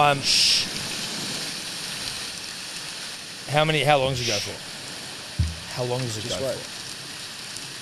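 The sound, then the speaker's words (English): Steady, dense rain hiss from a recorded Cologne thunderstorm rain-noise track fills the whole recording at an even level, with no distinct thunder rumble standing out, while a couple of people speak briefly over it. “I'm a rain noise operator. Now, I'm listening to Cologne or Cologne. Probably Cologne. Thunderstorm.”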